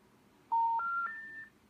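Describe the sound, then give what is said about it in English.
Three rising electronic tones play one after another, each a steady pure beep stepping higher in pitch: the classic telephone disconnected-number signal, clear over faint line hiss. “You have reached a number that has been disconnected or is no longer in service.”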